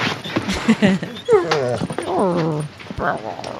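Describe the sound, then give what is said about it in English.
A person's voice imitates a dog whimpering, producing a few wavering, high-pitched whines that rise and fall over a couple of seconds, with some breathy vocal sounds around them. “I can't do dog noises.”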